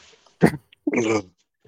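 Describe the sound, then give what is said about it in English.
A dog, startled by its owner, lets out a sharp, abrupt bark followed by a longer, strained yelp, both fairly loud, with quiet pauses around them. “Oh, no, I scared the fuck out of my dog.”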